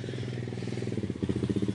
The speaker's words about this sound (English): And there's Willie arriving on his quad bike.